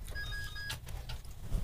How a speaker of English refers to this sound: We're getting a phone call. All right. Let's take it.